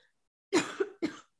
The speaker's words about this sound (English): Sorry, I still have a cough. God, that was nasty. Hold on. I got to take a sip. Oh, Jesus Christ. This is just like, guys, I'm fine. This is just like, you know, when you're done being sick and you just cough for like fucking 2 months.